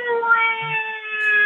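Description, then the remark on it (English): A caller imitates the patented 2B werewolf howl: one long, steady, fairly high-pitched wailing note, held without a break and rich in overtones, with no talking over it. “Is that the 2B, the patented 2B howl that I forgot?”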